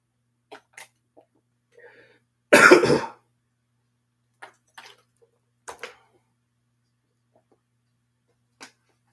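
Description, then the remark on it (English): Someone pauses to drink water: scattered small clicks and handling noises, one loud burst partway through, and faint sipping sounds, with no talking. “Let me take a water break here.”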